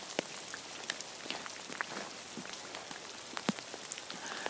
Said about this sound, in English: I haven't got an inspirational quote, but I think I'm going to just leave it with the sound of the rain.